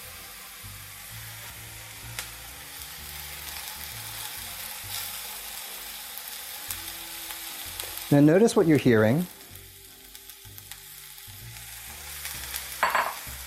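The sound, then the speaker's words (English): Mushrooms sizzle in hot oil in a pan, a steady, mellow crackle, with a louder clattering burst of sizzle midway as they hit the pan. A man speaks briefly over it. “You're hearing a nice sort of mellow sizzle.”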